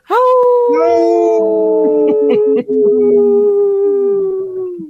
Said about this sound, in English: There was one wolf that was laughing and not howling. I was totally unprepared for that.